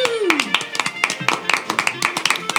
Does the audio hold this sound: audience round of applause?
yes